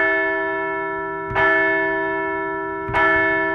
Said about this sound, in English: We're going to ring the bell for a first series win of the season in the first series at Citizens Bank Park in front of the Phillies faithful.